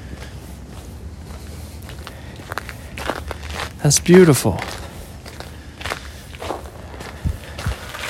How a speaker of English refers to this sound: Crunch, crunch, crunch, crunch, crunch, said the snow under the feet at 11 degrees at 11 o'clock at night.